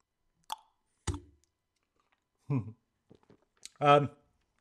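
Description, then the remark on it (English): Two sharp glass taps ring out close to the microphone as a glass of Czech beer is raised in a quick toast, followed by a few short murmured vocal sounds. “So just a little quick cheers to the microphone.”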